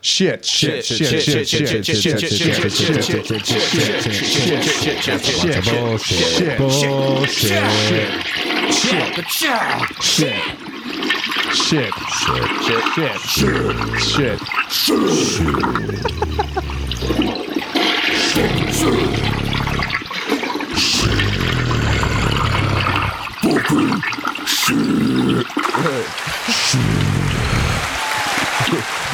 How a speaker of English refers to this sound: That one was still finishing. That one needed an extra flush. Jesus. That was a double flusher.